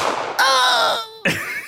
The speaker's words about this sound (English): can you add a gunshot sound right before I do this?